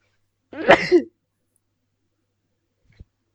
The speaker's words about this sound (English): I tried to hold my sneeze before, after you finished speaking. Okay, great. So that I would sneeze after you finished speaking.